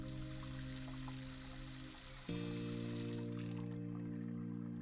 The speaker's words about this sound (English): That's probably the best time I ever had doing dishes for someone.